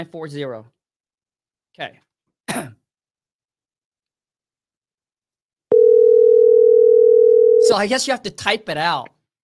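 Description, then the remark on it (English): A steady, unbroken telephone tone sounds clearly for about two seconds, then cuts off as a voice begins speaking; brief throat and breath noises come earlier. “I guess you have to type your phone number.”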